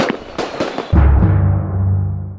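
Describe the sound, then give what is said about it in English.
A quick series of sharp pops and crackles, then a loud, deep boom that rolls into a long, rumbling echo as fireworks explode. No one speaks. “The fireworks scared him off.”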